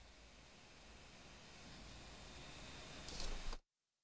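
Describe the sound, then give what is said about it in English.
Steady, broad whooshing of an electric fan blowing directly onto a person, a constant airy roar that swells slightly near the end before cutting off abruptly into silence. “This damn fan is blowing directly on top of me.”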